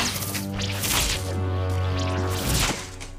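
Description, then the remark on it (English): Several sharp whip lashes crack and thwack in close succession, loud, as a slaver beats a man in the streets, with a low sustained tone droning beneath the strikes. “Tell it to my whip.”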